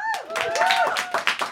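An audience bursts into applause to vote for a pitched Shawshank Redemption Universe, dense overlapping hand claps mixed with high, rising whoops and cheers that carry through the brief, steady burst.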